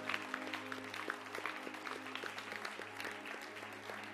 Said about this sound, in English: Can we give him now a big hand clap and let's just say thanks one more time.